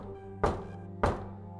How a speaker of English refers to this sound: When she finally knocked, the conversation halted.